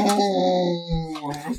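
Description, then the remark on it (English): Dogs whining in a long, drawn-out, tonal cry that holds a steady pitch, then breaks into a couple of shorter, wavering whines toward the end. Fairly loud, with no other sounds. “And the dogs are really mad about that. You can hear that.”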